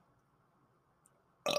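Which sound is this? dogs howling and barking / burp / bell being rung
burp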